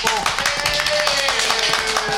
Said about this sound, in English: Hello, new people. Hello. Applaud these people coming in. Hello, people.